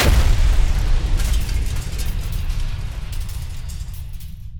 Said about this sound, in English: The ground shaking and rumbling noise was coming from the giant molasses tank. The structure was coming apart violently, and as shocked onlookers tried to grasp the reality of the situation, it exploded.